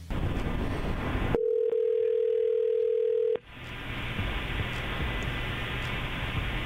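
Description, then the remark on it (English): A single steady ringback tone lasting about two seconds sounds over a phone line as a call is placed to a woman, with hissy line noise before and after it. Nobody speaks. “So we're going to call right now, see if we can get her on the phone.”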